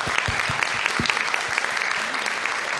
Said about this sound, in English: I just want to give another round of applause for everyone who's actually had shared a story. They've been absolutely amazing. Thank you so much.